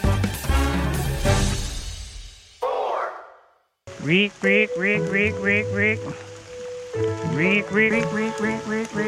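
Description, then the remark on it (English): A man's voice, an Australian conservationist's, imitates frog calls: a rough, buzzy croaking burst, then a rapid run of rising whistled chirps repeating in a steady rhythm over low croaks. “Whilst it might sound pretty convincing, that wasn't a frog you just heard.”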